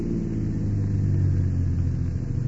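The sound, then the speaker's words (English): A car engine hums with a low, steady rumble that eases slightly as the car slows to park, continuous with no voices. “What are you slowing down for?”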